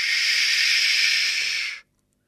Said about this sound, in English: Flush.